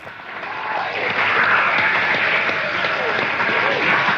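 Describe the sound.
A London crowd applauds steadily, dense overlapping claps building slightly then holding at a loud, even level, with a murmur of voices mixed into the clapping.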